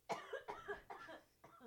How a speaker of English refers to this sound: There's like a minute of me like editing out because I was like, you're just like coughing, and which is fine. But I'm like, you need to slow down when you're drinking your tea.